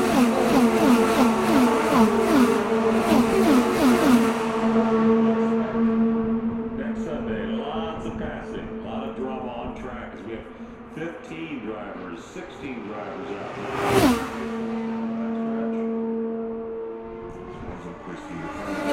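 IndyCar race cars on the track at the 2023 Indianapolis 500: high-pitched racing engines whine continuously with rising and falling pitch, and one car roars past in a sharp, loud whoosh near the end before the droning engines continue.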